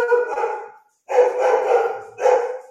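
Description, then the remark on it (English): A dog lets out three drawn-out, loud howling barks, each a sustained cry separated by brief pauses, with no one talking over it. “But it's like, as soon as I lay down, my mind's either racing or the dog's...”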